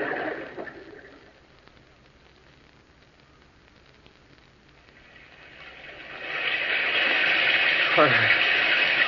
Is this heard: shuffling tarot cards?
no